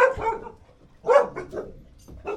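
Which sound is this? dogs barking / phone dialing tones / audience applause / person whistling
dogs barking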